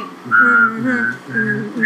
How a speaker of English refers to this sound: Oh, you're having a whistle off?